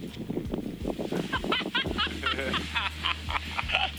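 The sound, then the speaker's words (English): A skier whoops and hollers after finishing a powder run, letting out a quick, excited string of high, wavering yelps over a steady low rumble. “Okay, I know, not the typical bird song you'd expect, but I think many of us can relate to the sound of Stoke, a good friend finishing up a powder run.”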